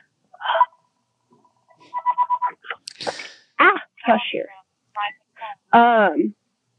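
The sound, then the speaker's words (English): A house phone rings with short, rapid electronic trills repeating in bursts, fairly clear, while a person speaks over and around the ringing. “Gosh, here, my house phones are ringing.”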